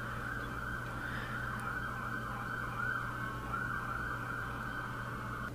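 An emergency vehicle siren wails steadily through the whole stretch over a low rumble of city street traffic in New York City, with no one talking.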